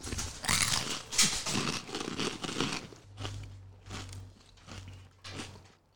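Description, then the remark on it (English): Loud crunching of several Flamin' Hot Cheetos being chewed and washed down with milk, dense and crackly at first, then easing into softer, intermittent chewing bursts over a low steady hum. “We take several flaming hot Cheetos, put them in our mouth, wash them down with milk.”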